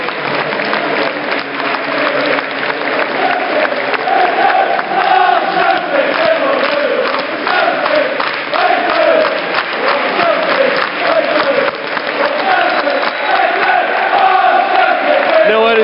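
A large football crowd applauds steadily at full time of Celtic's 2-0 win over Hibs, a dense roar of clapping and cheering that holds at a constant loud level for the whole stretch, with raised voices rising through it.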